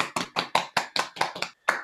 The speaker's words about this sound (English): I feel like we should give them a quick round of applause. Yeah. I'm going to just give them a quick round of applause.